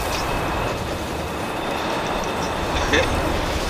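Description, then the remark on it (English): A train rolls along the rails with a loud, steady rumble that holds constant throughout, broken only by a brief faint metallic squeal near the end. “I got the train.”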